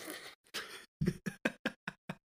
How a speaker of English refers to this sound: Careful, because the door is open. It's going to smack it. The closet door. Yep, there you go. I thought you said closet, and then when I banged the door, I went, oh, you meant closet.